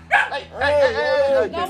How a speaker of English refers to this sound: They're good dogs.